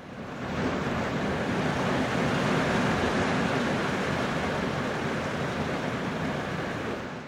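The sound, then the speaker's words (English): Heavy rain pounds down in a steady, dense roar of hissing noise that holds constant and loud for several seconds, with no voices. “I'm going to pause again now and see if you can hear the rain that is just pounding down here at the moment.”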